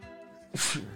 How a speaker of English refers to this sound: Fuck, excuse me. Bless you.